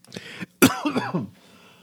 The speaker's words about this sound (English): Okay, a cough. Thank you. I was waiting just to do that.